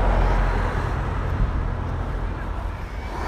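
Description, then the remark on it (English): A car's low engine rumble on a street as an Uber ride arrives, steady and then easing slightly as it slows and pulls up, with a broad wash of road noise around it. “Looks like a silver car to me.”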